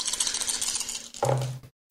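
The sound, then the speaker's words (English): Dice clatter and rattle across a hard tabletop for just over a second, then spin briefly to a stop before silence, coming up as a low roll. No one speaks. “Low roll the first time.”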